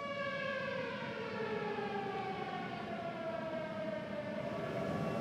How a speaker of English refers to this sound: And while they were recording the interview, the missile strike sirens began blaring all around them.